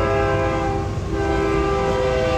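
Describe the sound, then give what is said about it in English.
A train horn blares loudly and steadily, its stacked harmonic tones held without a break, over the low rumble of a passing train. “It's the train.”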